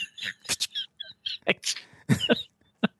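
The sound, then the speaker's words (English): A small pet with sniffles sneezes and snuffles in a quick, irregular series of sharp, breathy bursts, fairly loud, with brief squeaky nasal sounds between them and no talking. “He's got sniffles. Yes. Yeah. So he sneezes every once in a while.”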